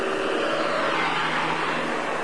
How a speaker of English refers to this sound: That man just went 50 miles an hour down the street.